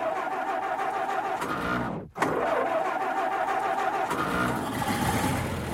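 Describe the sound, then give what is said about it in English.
The engine of a steam-and-nuclear hybrid drilling machine turns over and starts, with a brief sharp cutout midway before it settles into a steady, loud rumbling hum with bright mechanical whine; no one speaks. “All right, let me fire up the engine here.”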